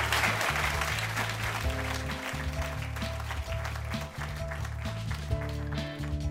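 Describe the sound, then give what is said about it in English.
A show audience gives guest Tony Schwartz one more round of applause, clapping steadily and loudly for about six seconds, a dense unbroken wash of clapping with low, sustained musical notes shifting underneath it. “Let's have one more round of applause for Tony, and welcome back, Andrea and Eric.”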